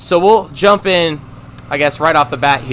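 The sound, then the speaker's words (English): A tractor engine, at work on a baseball field that is getting work done, drones steadily at a low pitch beneath a man speaking, its even rumble continuing under the talk for the whole stretch. “Oh, man, this tractor. We were not expecting this whatsoever. So I apologize for the noise.”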